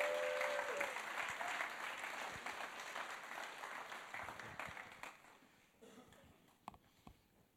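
A crowd claps steadily in a dense wash of applause that slowly thins and fades over several seconds, leaving scattered last claps at the end.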